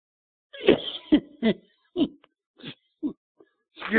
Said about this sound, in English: I'm making myself cough. Dear me. My apologies.